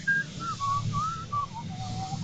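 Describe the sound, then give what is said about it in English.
A person whistles the opening theme of the video game Mega Man 3 off-pitch, a short, wavering melody of several sliding notes, fairly loud, with a low background rumble underneath and no talking. “Okay, you don't have to whistle anymore.”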